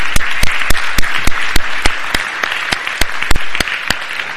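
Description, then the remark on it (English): An audience claps steadily for several seconds after a children's sermon, a dense patter of many hands with a few sharp claps cutting through, the applause holding at an even, lively level throughout. “Don't you want to clap for that?”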